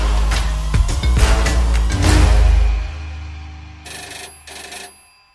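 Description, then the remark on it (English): A telephone rings loudly, a busy tonal ringing that ends with two distinct short bursts before falling silent. No one speaks. “Phone call for you.”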